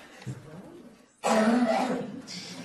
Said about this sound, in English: I don't think we have to watch him keep coughing forever. But that's, you know, that's that honking cough that can be done on command and is not typically what we consider pathological.